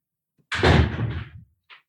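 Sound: door being closed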